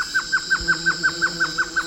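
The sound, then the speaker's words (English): A violaceous trogon calls a fast, even series of about eleven short, clear downslurred notes over a steady high insect drone in the background. “The violaceous trogon is a striking bird, 10 inches tall with a deep blue head and breast and bright yellow belly.”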